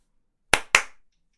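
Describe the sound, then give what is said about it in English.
A double clap in a disco-influenced song: two sharp, bright claps in quick succession, about a fifth of a second apart, each with a short decaying tail, then silence. No voices. “And also one of the things that I love in this song, probably being brought on from those disco elements, a double clap.”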